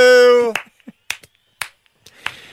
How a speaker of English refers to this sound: Yeah, have we won? We've definitely won. Give ourselves a winner sound effect.